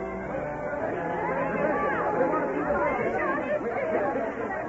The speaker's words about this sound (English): The crowd became restless. They had been here for hours and all for nothing, and angry voices echoed against the hills.